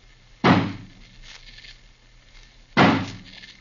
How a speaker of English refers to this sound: We'd better break the door down. Suppose we have old Johnny use his axe on it. That'll be quicker. Of course. Johnny, smash the door open for us. Stand back, please.